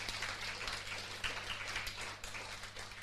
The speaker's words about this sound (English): You can applaud spontaneously, that's fine.